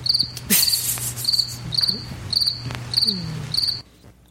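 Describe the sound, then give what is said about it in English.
Crickets chirp in a steady, rhythmic series of high, pulsing trills over a faint low hum, the chirping repeating about six times before cutting off abruptly near the end. “Fox News is quite silent on this. Crickets.”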